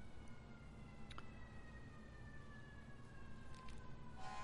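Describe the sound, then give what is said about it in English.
An emergency siren wails outside, its sweeping tones sliding steadily over a dense rumble of background noise, faint and continuous for several seconds with no voices. “Can't tell how much of that siren is coming through the monitor or how much I'm actually just hearing outside of my ears.”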